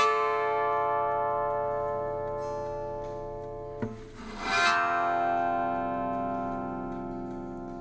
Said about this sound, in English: One of my favorite sounds that we created on this recording is the bowed guitar